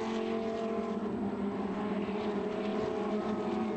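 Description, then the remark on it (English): A steady, loud drone of several Lamborghini Super Trofeo race car engines cruising at a low, even pace behind a safety car through the bottom of the corkscrew during round 10, their harmonics overlapping in a continuous rumble with no rise or fall and no voices. “We should be seeing the safety car pulling away ever so slightly as they come through the bottom of the corkscrew after such a huge fall.”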